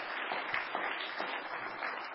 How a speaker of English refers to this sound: We should give the Lord a hand clap for Him loving us.